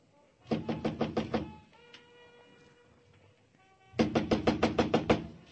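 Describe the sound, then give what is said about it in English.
Police knock on a door in two bursts of rapid, loud knocking, about six or seven sharp raps each, separated by a quieter pause with faint background tones. “Come on, open up, Harvey. Move away from the door, Mugovan. Open the door, I'll break it down.”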